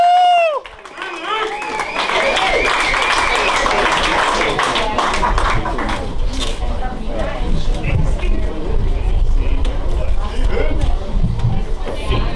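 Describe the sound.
A comedy show crowd breaks into sustained applause with whoops and cheers as the next comic is introduced, loud and dense for about twelve seconds, with a sharp high whistle or shout at the very start and voices mixed in throughout.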